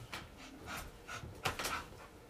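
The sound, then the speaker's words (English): A dog pants in quick, breathy bursts, with shuffling and scuffling as it moves around and jumps at a person; the sound is fairly quiet overall and no one speaks. “You guys know how hard it is to do a podcast with a fucking dog attacking you?”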